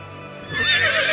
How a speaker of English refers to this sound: With a neigh, Black Beauty rode off into the London fog.